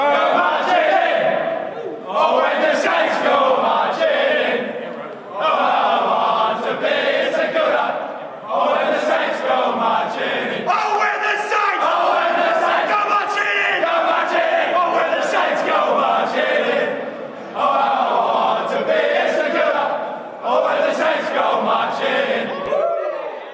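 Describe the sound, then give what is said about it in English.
The St Kilda Saints AFL team belts out its club song together in the rooms after their win at Marvel Stadium, loud and raucous, many voices in rough unison, with short breaks between lines and a steady, chant-like rhythm throughout. “Here's the Saints singing the song in the rooms after their win.”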